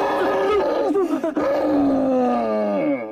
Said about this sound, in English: It's all right. There's no danger and no ghost. See? It was this poor old chap howling. Gorilla. He broke his arm falling down the tower staircase just before you arrived.